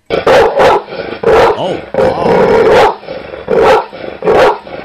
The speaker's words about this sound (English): Okay, that's a big mean dog